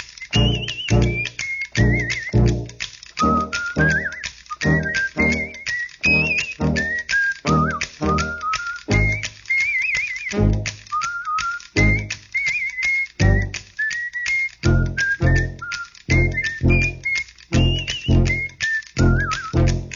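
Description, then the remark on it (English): A man whistles a bright, bouncy tune over a steady, clacking rhythmic beat, the melody clear, playing continuously without any talking. “I don't know, but it sounds to me like that whistling man with the bone.”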